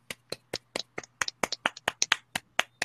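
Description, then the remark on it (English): A brief round of hand clapping, roughly fifteen sharp, crisp claps at a quick, slightly uneven pace, fairly soft overall, with no voices over them. “I think we got to clap him out for that, right?”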